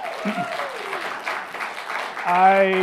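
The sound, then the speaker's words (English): A church audience applauds during a service in a steady, dense wash of clapping, with a voice faintly audible early on and a loud sustained tone rising in over the applause near the end. “I say that not so that you will applaud me, but so that I might applaud you, because I am just so grateful and so thankful for the year that we've had.”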